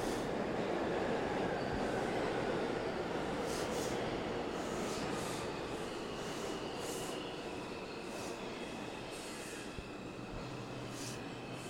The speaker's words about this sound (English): All right, so here we go on the subway. Hopefully I can find a corner that's a little, you know, a little nook that's a little bit less crazy.